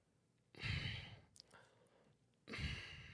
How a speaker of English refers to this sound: I'm breathing very loud.